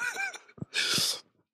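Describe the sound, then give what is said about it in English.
A short breathy vocal sound leads into a harsh cough, a brief hack followed by a longer rough burst, loud and alone with no talking, as a man coughs in his wife's face while giving a Bible teaching. “I just coughed in my wife's face.”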